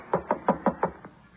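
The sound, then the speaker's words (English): Six quick, evenly spaced knocks rap on a door, sharp, with the final knock noticeably softer than the rest. No voices accompany them. “Go ahead and knock.”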